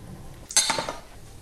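A single metallic clunk of a large saucepan holding trimmed, halved leeks covered with water, set down on a stovetop over high heat, with a brief clatter that rings out and fades over a quiet background. No one speaks.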